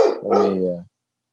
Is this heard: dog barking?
yes